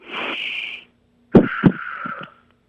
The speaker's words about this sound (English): So could you just breathe, could you do a deep breath in and a deep breath out for me real quick? Like over the phone? Right? Yeah, just a deep breath in and a deep breath out, and I'm going to monitor your breathing.